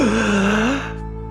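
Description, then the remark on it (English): A single strained, voiced gasp for air, as if a person is imitating someone waking with a start on a table. It is fairly loud, then fades into a low steady background hum. “Then all of a sudden you wake up on the table of Iris's house, like gasping for air.”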